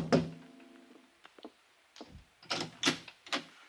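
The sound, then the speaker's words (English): Several irregular, fairly sharp knocks on the wooden door of Janice Floyd's apartment, starting with a heavier thud followed by lighter taps and a quick final cluster, with no voices. “I was still weaving on my feet when I tapped on the door.”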